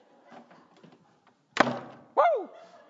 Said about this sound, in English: We're going to close the door. I got it real quick. I'm going to beat you to it.